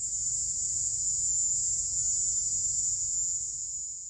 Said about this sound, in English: They're really annoying, but they're just crickets. Two scientists who analysed that recording concluded that the species was most likely the Indies short-tailed cricket. Here's what they sound like.